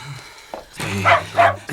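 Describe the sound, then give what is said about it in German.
A dog barks twice in quick succession, short, fairly loud yelping barks, with a low hum in the background and no talking. “Euer Hund muss wohl mal das Bein heben, ha?”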